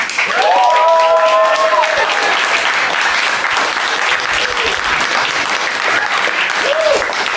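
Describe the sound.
Sustained crowd applause and cheering for an audience vote on the winner of a fight, a dense steady roar of clapping throughout, with a few voices shouting over it.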